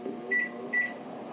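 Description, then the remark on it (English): A microwave oven heating up dinner runs with a steady low hum, and two short, high electronic beeps sound over it in quick succession before the droning continues alone. “I'm still heating up dinner.”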